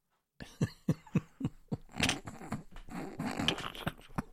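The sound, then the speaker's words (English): A burst of harsh coughs: four or five quick hacks in a row, then a rougher, rasping stretch of coughing and throat noise that runs on to the end. “Oh, I've got a bit of a cough”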